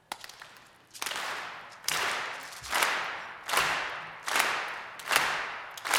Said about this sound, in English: We're just going to ask if you clap with us.